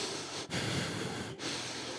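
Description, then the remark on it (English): Loud nasal breathing with a harsh, airy hiss through nose hair, running almost continuously with two brief pauses between breaths. There is no talking. “Like my Garrison Keillor nose hair breathe?”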